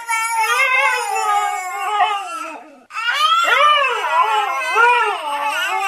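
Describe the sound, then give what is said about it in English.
A husky howls in long, wavering, sliding tones while a baby wails and coos back, the two imitating each other, their voices overlapping and trading off, loud, with one brief pause midway. “The top 3 coming up after the husky and the baby go at it imitating. imitating each other again.”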